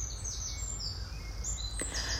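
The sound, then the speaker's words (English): Birds singing outdoors, a steady layer of high chirps and whistled phrases over a low rumbling background, with a brief sharp click near the end. No one speaks. “And if that's not working for you, so simply listen to the birds and imagine that the singing is touching each cell of your body, sending lots of love.”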